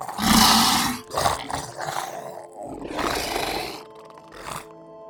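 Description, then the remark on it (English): Several loud, deep roars and bellows of creatures overlap in quick succession in a swampy area, harsh and growling, rising and falling in bursts with a rumbling low end and no talking. “The bellowing of these creatures echoes through this swampy area.”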